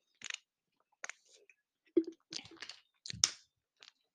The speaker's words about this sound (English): Sorry, just having some sips here to keep myself hydrated, energized.